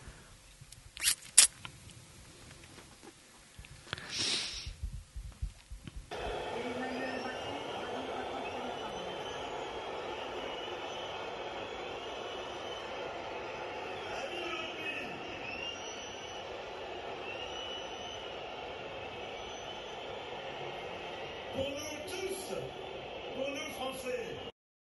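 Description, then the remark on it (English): A large crowd at an opening ceremony in a big Paris stadium keeps up a steady roar of booing, with shrill whistles streaking over it. The noise starts abruptly after a few seconds and never lets up, while Emmanuel speaks beneath it. “Hard to get a word in edgeways because of all that whistling and booing.”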